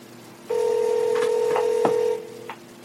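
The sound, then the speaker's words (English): A steady landline telephone dial tone hums for over a second and a half while a few short keypad beeps land on top of it, then it cuts off, leaving one more faint beep. “you gotta use a real phone.”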